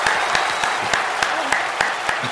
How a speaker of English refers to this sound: Thunderous applause.